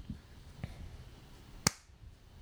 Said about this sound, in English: Little clap is good. The clap.